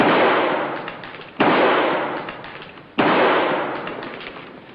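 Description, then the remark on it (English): Three loud, sharp gunshots, fired to shoot in a door lock, sound about a second and a half apart. Each blast trails off in a long, noisy decay before the next. No voices are heard. “Very well, then I'll shoot the lock in.”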